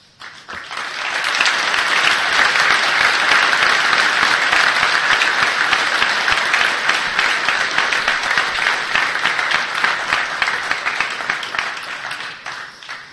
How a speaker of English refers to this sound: Thank you very much, ladies and gentlemen. One more nice round of applause for the legendary Chad Burton.